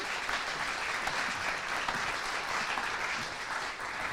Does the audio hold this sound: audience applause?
yes